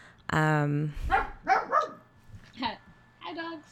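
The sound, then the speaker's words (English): A dog lets out one loud, drawn-out bark, then people start talking. “Dogs.”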